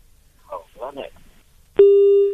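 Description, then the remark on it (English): A short burst of muffled voice over a caller's phone line from Port St. John's, then a loud, steady feedback whine cuts in abruptly and holds at one pitch until the end. “We can hear you, but there's bad feedback.”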